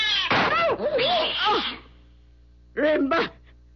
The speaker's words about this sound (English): That cat was mad. It was attacking.